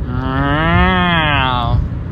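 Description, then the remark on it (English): A single long, loud cow moo rises and falls in pitch for nearly two seconds, with no one talking over it. “Shout outs to cows.”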